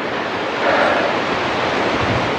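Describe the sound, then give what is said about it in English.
Steady, rushing wind buffets the microphone outdoors on a breezy day, a broad hissing roar that swells briefly near the start and then holds constant, with no voices present. “Quite a breezy day.”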